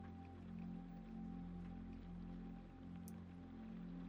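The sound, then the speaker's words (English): Quiet, steady rainfall at night, pattering softly and continuously over a low, droning hum, with no voices and no distinct individual drops standing out. “As the night went on, the rain continued to fall, each person going about their own lives, each affected by the weather in their own way.”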